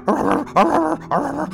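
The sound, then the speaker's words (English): A human voice imitates a dog barking wildly, three loud, yelping barks in quick succession with no other sound around them. “the wolf child comes out from around one of the wagons, barking wildly.”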